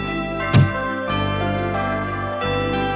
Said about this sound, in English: There's nothing like the sweet sound of tinkling bells to usher in the festive spirit.